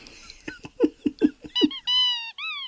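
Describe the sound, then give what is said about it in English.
A squeaky mouse toy lets out three shrill, whistly squeaks as it is picked up, the last two long and drawn out, following a quick series of soft tapping and handling noises. “The mouse toy squeaks as you pick it up.”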